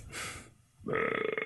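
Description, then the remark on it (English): A short breathy rush of air, then a loud, croaking burp with a rattling, pulsing tone that holds for about half a second; a video game burp triggered with the C button. “Burp is the C button.”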